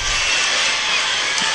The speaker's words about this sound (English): Hey, man, you brought back the crowd noise. That was good. Only took 3 months.